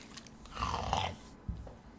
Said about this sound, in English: So wait, be quiet. I have to open my Oreos before you answer. I won't crunch them, though. I'll just suck on them until they dissolve down my throat.